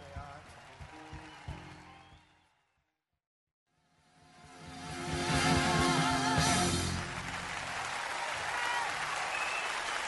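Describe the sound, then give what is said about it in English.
Applause from a large live audience at the end of a concert at the Budokan swells after a brief silence, building into a dense, sustained roar of clapping and cheering that stays loud to the end, with some murmured voices earlier. “It's got a crowd there.”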